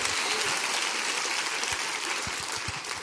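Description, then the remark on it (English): A crowd claps hands together, a dense, steady wash of applause filling the space at moderate loudness, with many overlapping claps and no clear rhythm. “Clap your hands and rejoice in that.”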